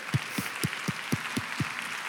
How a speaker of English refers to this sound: Let's clap.